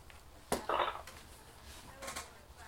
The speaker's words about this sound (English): Sounds of dice. Getting some more? 10, 19, 23. Oh, yeah, 23.